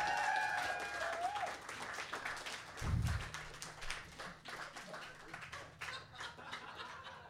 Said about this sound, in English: Can we have one more round of applause for him?